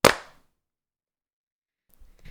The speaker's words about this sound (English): All right, and clap sync. 3, 2, 1.